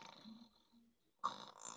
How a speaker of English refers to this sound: What is that? He's sleeping. That was a snore. That's cute.